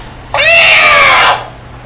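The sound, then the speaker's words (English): A cat lets out one loud, drawn-out yowl lasting about a second, its pitch rising then sliding slightly down. The sound is harsh, with quiet before and after. “God damn it, Fluffles, you be quiet, I'm on the phone!”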